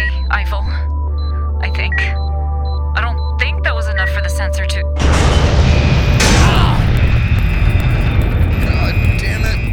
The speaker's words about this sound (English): Fire containment's green, but that's in spite of the fact you just had a big-ass explosion, which means air!